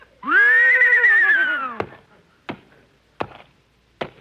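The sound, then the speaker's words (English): A horse gives a loud, drawn-out whinny, followed by four sharp, evenly spaced hoof taps, like stamping out a count, as the trained horse answers how much 2 and 2 is. No one speaks. “Okay, tell me, horsey, how much is 2 and 2?”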